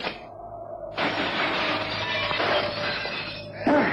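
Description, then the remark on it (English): Glass shatters loudly, a sudden burst of breaking skylight panes as Sherlock Holmes jumps through the glass, followed by a long spray of tinkling shards, with a second crash of glass near the end. “I'm going to simply jump through the glass.”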